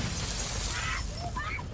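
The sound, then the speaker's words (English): Window glass shatters loudly, a dense burst of crashing, tinkling fragments that rings on for nearly two seconds with a few brief higher chimes near the end. “Here's where we shot this scene, obviously, in continuity because we had to, because we didn't want to be replacing glass on windows because we couldn't.”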